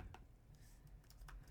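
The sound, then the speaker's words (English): Quiet, rapid computer keyboard typing with several sharp key clicks spaced irregularly over a low background hum, soft, as someone looks something up. “I'm sorry if you can hear my clicking, everyone.”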